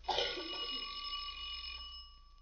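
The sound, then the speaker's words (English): Someone rings the doorbell at a front door: a steady, high-pitched electric tone for about two seconds, then it trails off. No voices accompany it. “Try the doorbell.”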